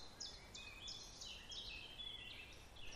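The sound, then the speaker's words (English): A chiffchaff sings a steady run of high, two-pitched notes at an even pace in a woodland in summer, fairly soft over a faint woodland background hiss. “And by coming out, there's a lovely bird, a chiff-chaff.”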